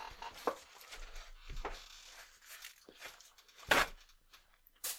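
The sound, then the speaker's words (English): Paper towel being torn from a roll to dab a forehead, a few short crisp rips and rustles scattered across the moment, with one louder tear near the end and no talking. “Can you pass me a paper towel?”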